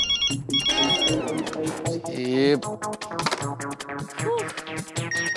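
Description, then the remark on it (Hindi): A melodic phone ringtone plays loudly, a run of bright, tuneful electronic notes with shifting pitch and no voices over it. “तारक को तो मैं जब प्यार से फोन करती हूँ ना।”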